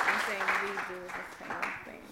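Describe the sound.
Steady clapping from an audience giving a woman a round of applause, a dense crackle lasting the whole moment, with voices calling and cheering over it.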